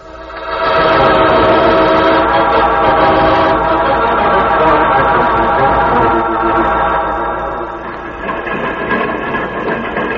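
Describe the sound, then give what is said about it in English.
A train rumbles along loudly with a dense, steady roar of wheels and machinery, then gradually eases off as it slows down; no one speaks. “See? Train is slowing down so that we can jump off.”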